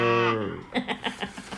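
A loud, low, drawn-out cow moo lasts about half a second, then gives way to a quick run of softer rhythmic bursts.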